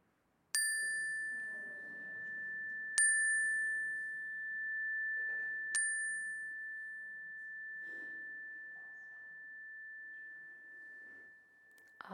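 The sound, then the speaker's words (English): During a prayer, a bright chime is struck three times a few seconds apart, its clear tone ringing on and slowly fading while soft, scattered voices quietly speak names aloud underneath. “I invite you to speak them aloud as the chime rings so we can hold them with you.”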